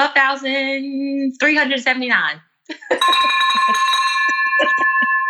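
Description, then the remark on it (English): A bell rings out in celebration of a closed deal after a few seconds of talking, its bright, sustained tone lingering steadily to the end while voices keep speaking over it. “Bell.”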